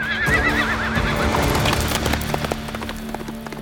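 A black horse, Zorro's, lets out a loud, quavering whinny, then hooves pound in a quick galloping rhythm that continues steadily as it speeds into the desert, with no voices.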